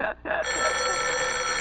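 A telephone bell rings loudly, a bright, rattling metallic trill that breaks off briefly at the start, then carries on steadily with no voices.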